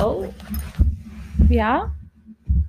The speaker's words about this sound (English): My dog wanted to join. Apologize for all those noises